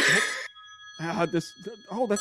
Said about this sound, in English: That's the hotline ringing, huh? Oh, weird. Okay, well, we just got a call to our hotline. Well, that's unexpected.